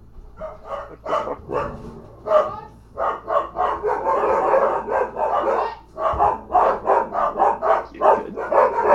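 Dogs bark loudly and continuously, a rapid overlapping string of sharp barks that swells into a dense burst midway before settling back into steady repeated barking.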